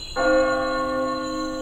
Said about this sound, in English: A bell tolls.